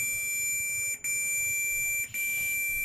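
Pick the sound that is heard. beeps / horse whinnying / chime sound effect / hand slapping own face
beeps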